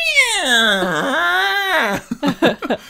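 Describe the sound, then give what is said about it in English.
A long, wavering yowl like an agitated cat, voiced by a person imitating it, loud, sliding down then up in pitch before breaking into a few short, choppy vocal bursts. “We've got this agitated cat we got from the shelter.”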